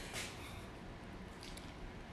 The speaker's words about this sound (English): Let me drink this fucking water.